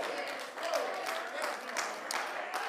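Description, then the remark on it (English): An audience clapping their hands together in praise in a steady, dense wash of claps, fairly loud and continuous for a few seconds, with some murmuring voices blended in. “Oh, let's clap our hands again and praise him tonight.”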